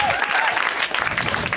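Audience applause, a dense steady patter of many hands clapping at once, loud, holding at an even level throughout with no voices standing out.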